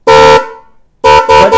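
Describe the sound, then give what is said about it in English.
Two car horns attached to a battery-powered drill, about the size of a small drill, blare in one sustained honk, pause briefly, then sound three quick choppy blasts in a row, harsh and brassy with no voices. “It's basically a battery-powered drill that has two car horns attached to it, and she will customize it just about any way that you can imagine.”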